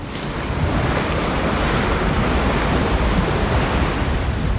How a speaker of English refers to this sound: the thick mist dissipated behind her and the waters gently parted, revealing a path at the bottom of the lake.